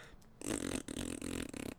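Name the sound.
soundboard fart noise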